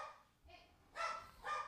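A dog named King barks several times in quick, uneven bursts, sharp and loud, with short pauses between the barks and no talking.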